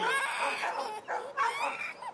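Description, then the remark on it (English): Dogs bark and yip excitedly in quick, high-pitched bursts, with a couple of brief pauses. The sound is moderately loud, and no one speaks. “God damn it, I think that the dogs woke up the baby.”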